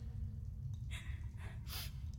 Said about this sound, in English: He's alive. Still breathing, heart beating, just unconscious.